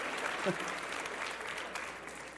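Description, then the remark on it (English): An audience applauds a volunteer after a card trick in which her card, the 5 of spades, was guessed, a dense, steady patter of many hands clapping at an even, moderate level that fills the whole clip without letting up. “Would you guys give her a round of applause?”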